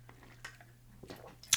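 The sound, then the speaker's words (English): Quiet mouth sounds of a person taking a drink of water: soft wet slurps and a swallow, ending in a sharp little click, with no talking. “In fact, stop what you're doing right now and take a drink of water. I'm gonna do that.”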